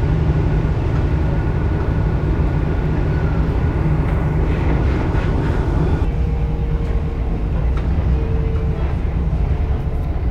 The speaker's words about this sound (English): I'm actually currently getting a train, so I will explain all of this later.